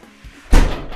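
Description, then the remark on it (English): A door slams shut once, loud, with a sharp thud that lingers briefly after a moment of near silence. No one speaks. “Why you gotta slam?”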